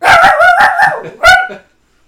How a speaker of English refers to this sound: but he's growling because he thinks he hears something. And I can tell you there's nothing here.